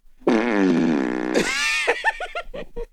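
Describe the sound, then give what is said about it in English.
A voice imitates a bathtub fart: a long buzzing blat that rises into a sputter, then breaks into a quick run of bubbly pops, loud with no talking. “It was a bathtub fart.”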